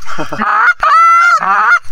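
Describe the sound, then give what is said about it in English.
A goose honks loudly, three long, harsh, nasal calls in quick succession with brief gaps between them, each one strongly harmonic and slightly rising. “So this goose is like, so this might be a suicide single.”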